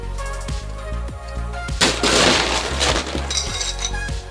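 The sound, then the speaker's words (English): Ice cubes clatter into a mixing glass holding aromatic and orange bitters for a cocktail, with a few sharp clinks and then a dense, rattling tumble of cubes, loud, with no voices. “2 dashes of orange bitters go in the mixing glass, and then top that all off with ice.”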